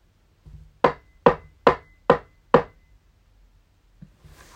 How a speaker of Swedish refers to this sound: Plötsligt så hör de någon som knackar. Vad var det? Säger Emil. Så låter det lite högre. Nu är vi närma. Vart kommer knackningarna ifrån?